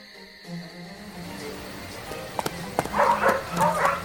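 hunting dogs barking

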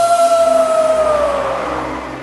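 howling storm wind

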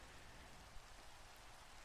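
steady rain falling

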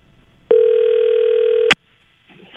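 telephone dial tone

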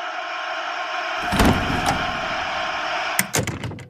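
door opening

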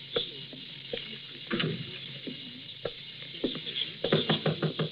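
knocking on a door

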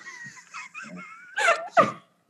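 dog howling and whimpering

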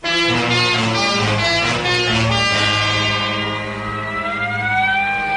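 ambulance siren wailing

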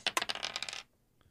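dice being rolled

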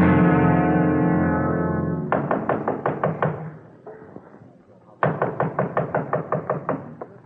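knocking on a door

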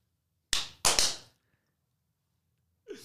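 hands clapping

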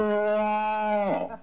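cow mooing

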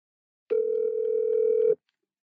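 phone dial tone

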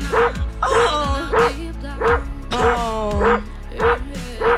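dogs barking

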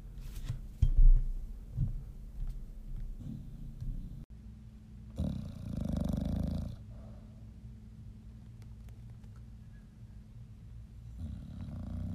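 dog snoring

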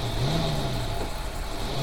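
car engine revving

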